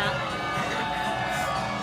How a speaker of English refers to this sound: What's that? That was an angry one there. It was a bit of an angry crowd. Yeah. For the Lord of Darkness.